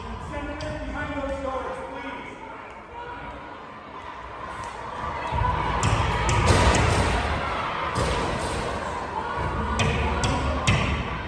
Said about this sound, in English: Rioters showed up at the Arizona State Senate over the weekend and they were attacking the building. Seems kind of insurrection-y. There they are outside the doors and they are they're beating on the doors.